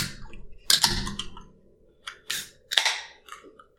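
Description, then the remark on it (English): Beer cans or bottles being opened, including a can of Cowbell Brewing Company's Shindig, a Huron County lager from Blyth: three sharp pops, each with a short hissing burst, spaced over a few seconds with quiet gaps and no talking. “Well, let's open these up. Let's get them cracking.”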